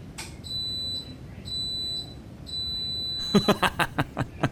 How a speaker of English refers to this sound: I've noticed my washing machine lets out a beep in the same pattern as a referee's full-time whistle.